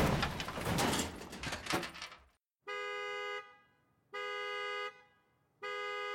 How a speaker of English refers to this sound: I hit the hover car behind me, triggering its alarm.